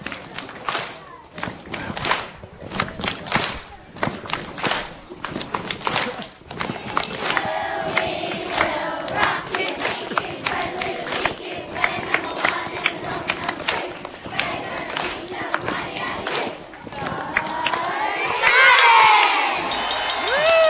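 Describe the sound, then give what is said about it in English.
A crowd of grade six schoolchildren from St. Martin's chanting and cheering their war cry, the charge, together, loud and sustained, with rhythmic shouts and stamping thuds, rising into higher-pitched yells near the end. “Oh, we're leading it off with the charge from the grade sixes.”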